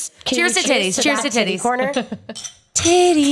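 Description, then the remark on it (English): Glasses of 13-year Toasted Oak Single Barrel clink together in a toast in a studio, bright ringing taps mixed in among several lively, overlapping voices that keep going around them. “So next up, what we just cheers with is the 13-year Toasted Oak Single Barrel.”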